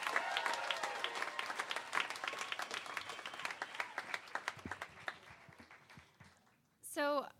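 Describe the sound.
A round of applause from an audience at an evening storytelling event, welcoming the last storyteller of the night, dense rapid clapping that gradually thins and fades out, followed by a short burst of a voice at the end.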